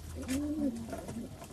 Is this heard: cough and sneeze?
no